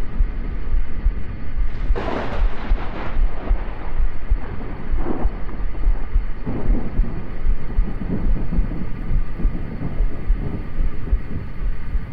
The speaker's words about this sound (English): The storm finally seems to be passing, and the constant static drone from the radio fades into streams of music.